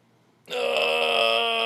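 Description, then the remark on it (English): After a brief quiet moment, a person lets out a loud, drawn-out yawn, a steady voiced groan that holds for over a second with no talking. “fucking yawning, and he'll probably take a nap.”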